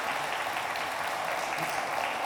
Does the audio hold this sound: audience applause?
yes